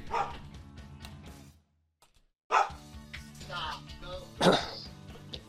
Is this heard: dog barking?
yes